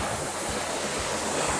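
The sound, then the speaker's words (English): A rowing machine's flywheel gives a steady, airy whoosh like rushing wind, with faint low pulses recurring about every half second, as someone rows at a steady stroke rate during a workout. No one speaks. “And if you're listening to the podcast, then just listen to the whoosh of my flywheel.”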